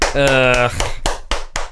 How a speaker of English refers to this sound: I feel like that clap is like the the sarcastic clap of that was 100% from the end of the Smash Brothers matches.